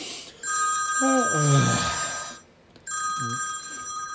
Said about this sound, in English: The phone rang again.